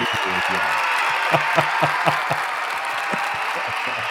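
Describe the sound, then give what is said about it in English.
A crowd applauding to welcome a guest on a show, with dense continuous clapping that fills the whole clip and a few sharper claps standing out in a steady rhythm; no voices are heard. “I almost forgot to tell to let everyone applaud you.”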